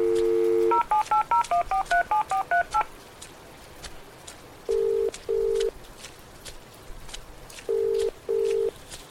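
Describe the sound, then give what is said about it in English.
A steady dial tone gives way to a quick run of about a dozen beeping keypad tones, then after a pause come two pairs of paired ringback tones, with faint background noise. “Come on, pick up. I'm sorry, but the person you've called is not available.”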